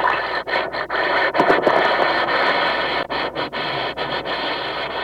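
A steady, crackling hiss of an Alka-Seltzer tablet fizzing in water, dense and bright, with a few brief dips in the bubbling, in a sponsor message for The Quiz Kids radio show. No one speaks.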